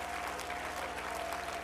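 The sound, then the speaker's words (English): A crowd claps steadily, a dense wash of many hands applauding at once, loud and continuous with a sustained tone humming beneath it, as a preacher calls on people to clap their hands and lift their voices to the King of Kings. “Oh, somebody clap your hands and lift your voice to the King of Kings and the Lord.”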